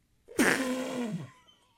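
A single loud sneeze with a sharp, hissing burst that trails into a drawn-out voiced tone, slowly falling in pitch before fading. No talking around it.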